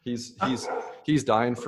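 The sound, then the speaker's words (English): Dogs bark in the background in a quick burst of three or four sharp, yappy barks, fairly loud, with a person's voice mixed in around them. “Sorry, there's some dogs in the background. I don't know if you can hear them.”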